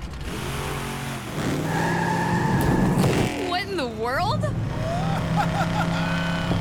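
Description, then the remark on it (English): A monster truck engine revs loudly, its pitch climbing, then tires squeal in a wavering skid before the motor rumbles on; a person exclaims in surprise over the noise. “Whoa! Was that a monster truck?”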